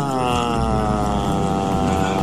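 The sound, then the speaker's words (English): A Thunder jet boat's engine, powered by a few hundred horsepower, roars steadily on the water: a loud continuous drone with a rich, buzzing hum of layered tones and a faint rushing wash over the top, holding level throughout. “I had organised a romantic date on a Thunder jet boat.”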